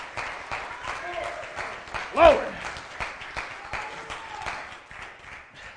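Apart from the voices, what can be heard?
audience clapping hands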